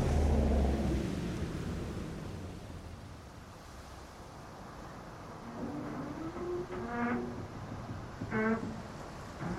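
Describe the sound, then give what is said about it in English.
A deep, rumbling wash of water and wind fills the scene, and midway through come drawn-out groaning, creaking tones as the hull of the ship Thunder strains while it is being sunk in the ocean. “Gemini, Bob Barker Bridge, yeah, this boat's going down much quicker now, so get them off.”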